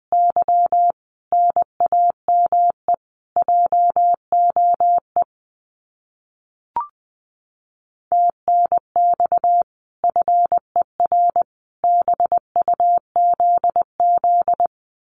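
Morse code of common amateur radio QSO phrases, keyed at about 20 words per minute: a steady mid-pitched beep chopping into quick dots and dashes, in several runs separated by short pauses, with a brief chirp in one silent gap.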